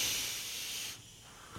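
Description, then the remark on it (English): An airy hiss of a vape being drawn and breathed out, lasting about a second before dropping to near quiet, with a tiny puff of air at the end. No talking. “I'll vape to that.”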